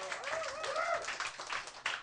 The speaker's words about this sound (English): Mr. K. Trevor Wilson, everybody. Give him a big round of applause.